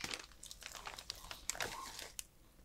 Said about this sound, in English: I can hear you rustling the bag of cheese.